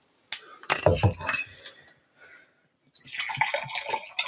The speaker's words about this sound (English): I hope you heard that. That was a big glug. You know, like the typical 2 shots of vodka.